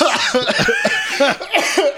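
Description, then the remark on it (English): A loud run of harsh coughs, several bursts in quick succession with short gasping breaths between them, and no talking. “Intense pain as we cough and laugh.”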